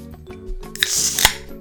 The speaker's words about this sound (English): Is that supposed to be a firework going off? No, I just opened my drink.